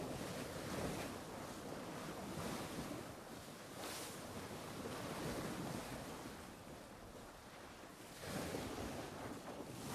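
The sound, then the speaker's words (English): Pacific Ocean waves roll in a steady, full roar of surf, swelling in broad surges every few seconds, with gusty wind noise mixed in and no voices. “And all collapsed, and the great Pacific rolled on as it rolled 5,000 years ago.”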